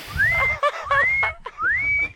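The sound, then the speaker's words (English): Someone whistles three short rising notes, each sliding upward and holding briefly, in an even repeating pattern. The whistling is clear over a low rumbling background. “I heard you whistle when you left from the studio into the Marley house.”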